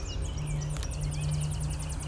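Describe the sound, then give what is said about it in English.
A Tennessee warbler sings a rapid, evenly spaced series of high, sharp chips, with other birds calling faintly over a steady low traffic rumble. “There's a Tennessee warbler.”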